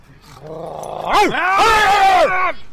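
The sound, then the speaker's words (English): A drawn-out rising growl swells into a loud, harsh bark-like yowl, forceful, a person's voice imitating an aggressive dog to scare away dogs, lasting a couple of seconds. “There's dogs. There's dogs everywhere.”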